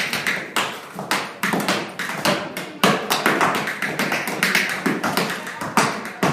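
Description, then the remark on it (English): Rapid, crisp tap dancing steps by a young tap dancer from Swindon clatter in quick bursts and rolling rhythms, sharp metallic taps mixed with heavier heel thuds, loud and steady throughout with no voices. “a talented young tap dancer from Swindon, raising funds to compete in the World Tap Dancing Championships in Germany.”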